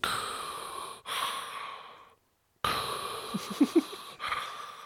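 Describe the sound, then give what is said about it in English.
Someone mimics heavy, loud breathing: a few long, raspy breaths, a brief silent pause, then more huffing exhales with a couple of short throaty catches. “Man, I'm right, just breathing.”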